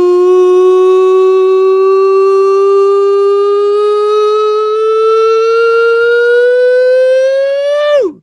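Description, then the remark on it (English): A loud siren sound effect holds one long, buzzy tone that creeps slowly upward in pitch for about eight seconds, then swoops sharply down and cuts off. No voices accompany it. “That is the nonsense siren back again, and it is time for you to deliver on your promise of weirdness every week.”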